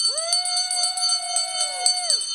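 A bell rings out in celebration of a founder, with a couple of quick strikes, its bright ringing tone sustaining and overlapping before fading away near the end. No one speaks during the ringing.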